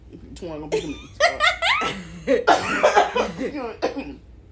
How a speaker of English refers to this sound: Hold on. Got a cough.